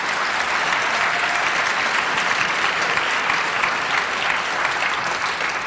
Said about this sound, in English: And I'm very delighted and honored to bring you this dynamic ensemble of Blue Flower Arts poets, Taylor Molly, Roger Bonera-Gard, Mark Doty, Marilyn Nelson, and Molly Peacock. Yes, give them a round of applause.